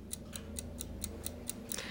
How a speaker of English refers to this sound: This is obviously the little timer. This is the timer. Can you hear it? So I live with this ticking.